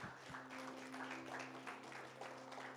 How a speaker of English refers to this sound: Will you give God a big hand clap this morning?